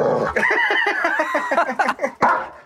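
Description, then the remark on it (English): A dog that has just walked in whines and yowls in a wavering, drawn-out run of high-pitched cries, fairly loud, with a few sharper yelps toward the end. “My dog has literally just walked in.”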